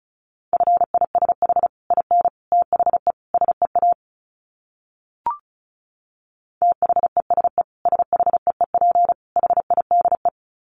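Fast Morse code at about 35 words per minute: a steady mid-pitched beep keyed into rapid dots and dashes, in two runs separated by a pause with a single soft click.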